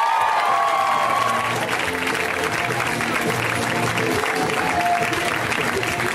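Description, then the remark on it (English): A crowd at a live comedy show applauds and cheers loudly and steadily as comedian Jenny Slate is introduced, dense clapping filling the whole stretch with scattered whoops and shouts rising above it. “Ladies and gentlemen, put your paws together for the fantastic Jenny Slate, everybody.”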